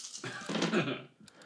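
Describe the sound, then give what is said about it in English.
A handful of eight dice is rolled for an investigation in a tabletop role-playing game. The dice clatter together in a dense burst of quick overlapping clicks and rattles for about a second, then fade into a few light, scattered taps as they settle. “This is the most dice I get to roll is when I do investigations.”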